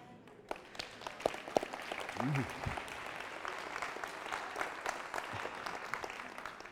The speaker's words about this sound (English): But after you clap for me too, right? What a jerk, huh? You're right. That was low. I get you. I got you. You're right. I take it back after you clap for me.